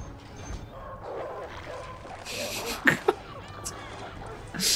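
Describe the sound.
A dog whimpers and lets out a couple of sharp barks in quick succession partway through, with muffled voices and a steady background rumble underneath.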